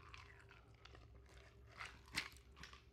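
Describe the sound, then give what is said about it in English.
Someone takes a sip of a drink up close: soft, wet mouth noises and faint slurps, with a sharper swallow-like click near the end. No one speaks. “Let me take a nice sip.”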